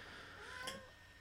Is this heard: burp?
no